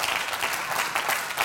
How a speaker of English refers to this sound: Can we give our lead pastors a round of applause?